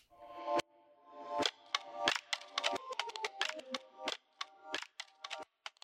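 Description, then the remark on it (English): A string of sharp, crisp hand claps for syncing, fired off irregularly and sometimes in quick bursts, ringing over a steady low humming tone with no one talking. “I want to do the clapping thing.”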